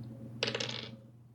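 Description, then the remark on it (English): A twenty-sided die clatters onto a tabletop, a sharp burst of hard plastic rattling that tumbles for about half a second before settling, over a low steady hum; it is rolled in a tabletop game and lands on 17. “you have a chance to disbelieve. Roll a d20.”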